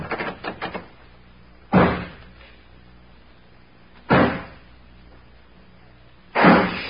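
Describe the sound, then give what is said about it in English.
A heavy door is slammed and forced with three loud, booming blows spaced a couple of seconds apart, each ringing briefly, after a flurry of smaller rattling knocks at the start. No one speaks. “Boy, whoever put that door up...”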